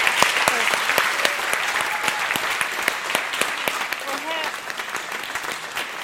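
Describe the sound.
Steady audience applause for an author after she spoke about her book fills the whole six seconds, a dense wash of many hands clapping at an even loudness, with a few sharper individual claps and faint voices mixed in.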